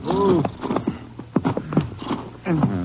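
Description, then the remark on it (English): Horses are reined to a stop in the mountains near the Rio, hooves clopping a few times on hard ground, with a whinny at the start and another snorting whinny at the end. “We can't go in very far in the horses. Maybe we should leave them right here.”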